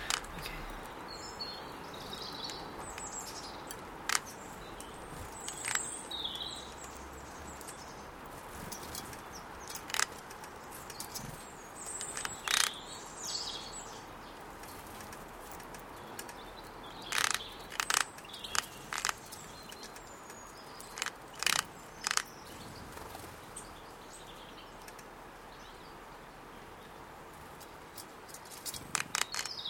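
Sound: birds chirping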